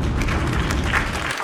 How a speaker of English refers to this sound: Hold on, let me get an applause